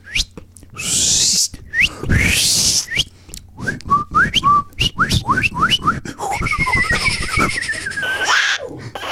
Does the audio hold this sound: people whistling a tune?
yes